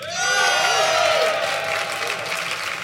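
A live Latitude audience, voting by applause on which side of a debate is right, bursts into loud, sustained applause with cheers and whoops rising over the clapping, filling the whole stretch with dense crowd noise.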